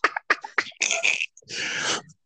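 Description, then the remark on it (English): A small dog gives three quick, sharp yaps, followed by two longer raspy, breathy bursts, muffled as it barks out in the living room behind a shut door; no one speaks. “Oh my God, I'm sorry, I didn't realize she was barking.”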